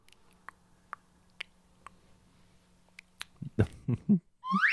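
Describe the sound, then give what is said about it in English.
A string of six or so sharp, dry mouth clicks, spaced irregularly about half a second apart, followed by louder short vocal bursts and a rising high-pitched squeal at the end. “You just made a clicking sound with your mouth and that was all.”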